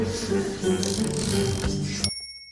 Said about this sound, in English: The dinner started out just as you would expect. Silence. Save for the noisiest chewing sounds ever and the clanking of cutlery.